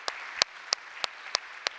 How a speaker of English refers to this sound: In fact, I know many of them are together with us here at our West Campus back there, so why don't we give them a round of applause, a big Beulah welcome.